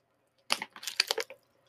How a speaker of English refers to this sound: Let me sip this water real quick.